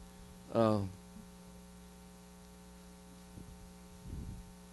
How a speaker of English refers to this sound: I got a bad hum over here somewhere.